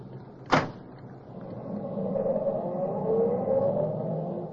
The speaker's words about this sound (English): Here's the car, I think.